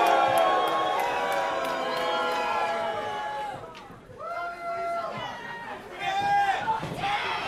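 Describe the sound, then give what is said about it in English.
A capacity arena crowd at a wrestling match roars and murmurs continuously, with many voices shouting and cheering at once, reacting to wrestler Delmi Exo. The noise dips briefly in the middle before swelling back up to a loud, dense din. “Delmi Exo not endearing herself to this capacity crowd here.”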